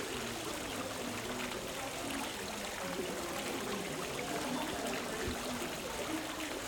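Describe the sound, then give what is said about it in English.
A small water feature in the subtropical house of Birmingham Botanical Gardens trickles steadily and continuously, a bright, splashing babble of running water with no pauses, at a moderate level. “So currently we are in the subtropical house of Birmingham Botanical Gardens, and as you can hear, there is a gorgeous little water feature right behind us.”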